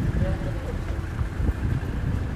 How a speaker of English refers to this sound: And now it's windy again.